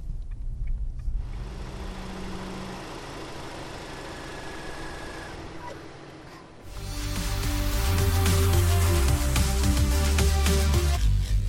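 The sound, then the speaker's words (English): An MG3 small car's 1.5-litre double overhead cam VTI-tech engine with manual transmission idles steadily, then revs up around the midpoint into a louder, harmonic-rich drone as it pulls away, with a strong low rumble throughout and no talking. “The MG3 1.5-litre double overhead cam VTI tech engine with manual transmission.”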